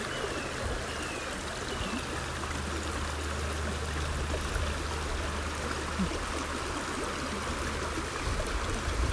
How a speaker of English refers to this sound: I can almost feel the mist on my skin from the water going over the rocks.